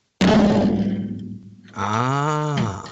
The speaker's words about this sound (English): Yeah, this is me hitting one of my floor toms right now. I don't know if you can hear that.